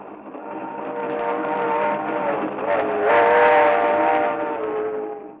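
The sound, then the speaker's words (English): A train heading to Miami rolls along the rails with a loud, steady rumble and a sustained whistling tone riding over it. It is continuous, swelling slightly midway, with no voices. “But on a train to Miami...”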